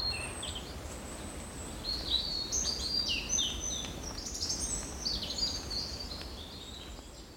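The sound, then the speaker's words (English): Swallows chirp and twitter around an old barn, zipping in and out to their nests, in a busy, overlapping chorus of high, quick warbling notes, steady throughout over a low background hum, with no voices. “And so we've got wonderful old barn here, and swallows. Just, well, they're everywhere.”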